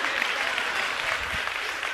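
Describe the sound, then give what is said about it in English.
An audience applauds steadily for about two seconds, a dense, even wash of many hands clapping at a fairly loud level, with no talking over it. “y'all should be applauding me right now because I'm about to help you.”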